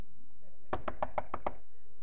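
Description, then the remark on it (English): Six quick, evenly spaced knocks on a door, a firm, steady rapping heard on its own, with short silences before and after. “The devil comes knocking.”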